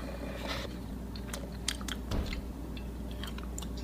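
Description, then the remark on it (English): Someone bites into and chews chicken wings, producing a series of short, crackly crunches and wet chewing sounds at a moderate level, with no one talking. “Look at these wings, Slim.”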